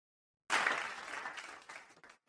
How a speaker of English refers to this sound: A nice, healthy round of applause from our live in studio audience.